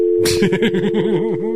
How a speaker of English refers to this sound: Daddy, and then just dial tone.